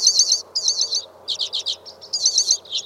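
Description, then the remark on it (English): Bright, buzzy jingling trills from a hoary redpoll, a tiny pale finch with pink breast and red crown, singing within low bushes, repeated in quick bursts, with a faint low background hum and no voices. “Within low bushes, a tiny pale finch with pink breast and red crown sings buzzy, jingling trills, a hoary redpoll.”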